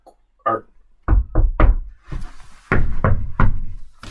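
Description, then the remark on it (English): Someone knocks on a metal and wood front door, a series of loud thuds in uneven groups, each hit sharp with a brief resonant ring, with no voices. “And now I'm knocking on the front door.”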